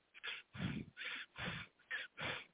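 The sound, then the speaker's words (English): A person doing conscious breathing: audible breathing with about six quick, noisy breaths alternating in and out in a steady rhythm, each a short airy rush with no talking. “When you breathe in this fashion, in a conscious way, you are doing that.”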